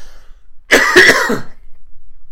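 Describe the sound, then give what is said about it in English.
A single harsh, raspy cough from a person with a really bad cold bursts out, lasting under a second with a couple of rough pulses, then fades back into quiet. “Cough.”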